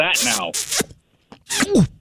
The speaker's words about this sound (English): This milkshake. You ever tried? It's like sometimes you get a milkshake and you're like, am I sucking the milkshake out of the cup or is the milkshake sucking me in through the straw? You know?